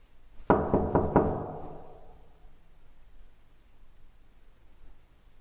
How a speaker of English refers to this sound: Oh, and this is the sound of me, leaving my apartment to go and knock on his door.